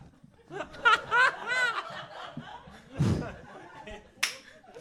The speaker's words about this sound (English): Slap Sorry, my thighs.